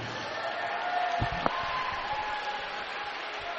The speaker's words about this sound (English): A big round of applause for Winston Hughes.